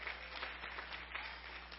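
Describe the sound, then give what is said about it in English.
An audience claps steadily for a couple of seconds, a soft, dense patter of many hands with no voices over it and a low hum underneath. “We can clap for that.”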